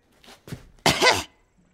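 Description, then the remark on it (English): A couple of soft breathy catches lead into a single short, harsh cough, fairly loud, with no talking around it. “A slight cough, madam.”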